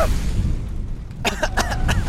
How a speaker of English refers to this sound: All of a sudden, an explosion occurs right in front of the traveler.